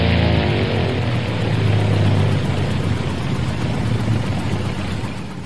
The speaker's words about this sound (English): Holy smokes, the engine just cut out.